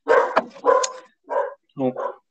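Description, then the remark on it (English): A dog at a house barks four times in quick succession as someone arrives, loud, each bark short and sharp with brief gaps between, sounding alert and insistent. “My dog just announced the arrival of someone at our house.”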